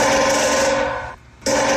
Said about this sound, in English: There is a woodpecker on my next door neighbor's satellite dish. Ready? Ready?